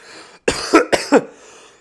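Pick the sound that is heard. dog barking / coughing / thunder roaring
coughing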